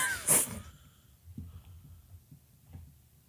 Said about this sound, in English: Hey, maybe I got that sneeze out of my system so I won't sneeze in your you car.